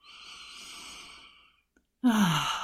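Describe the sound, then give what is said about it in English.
A person takes a slow, deep, intentional breath in through the nose, a short pause, then a louder, voiced exhale like a sigh, with no talking. “And every time I see the word breathe or someone speaks to me about breathing as an approach to dealing with intense emotions, I instinctively want to breathe.”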